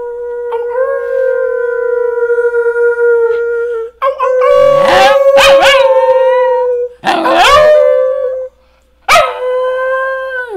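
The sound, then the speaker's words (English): A dog howls in long, sustained wavering notes, breaking into a few sharper yips and rising cries between the drawn-out howls, with no talking over it. “Probably get him to howl, honestly.”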